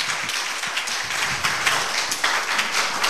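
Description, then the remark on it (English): A church audience applauds steadily during preaching, a dense wash of many hands clapping at once with no pauses, fairly loud and sustained for a few seconds, with no voices heard over it. “Can you clap a little?”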